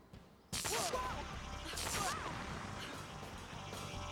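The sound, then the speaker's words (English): A forward cannon fires: two loud blasts go off about a second apart, each a sudden explosive burst with a whistling, warbling tone, leaving a steady roaring rumble that carries on afterward. “Those power brats have found the ship! Fire! Fiery forward cannon!”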